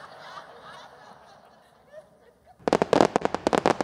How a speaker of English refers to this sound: Let's turn the sound way up. These are my fireworks.